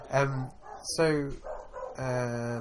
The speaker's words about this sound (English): Oh, I got so distracted by the dog barking.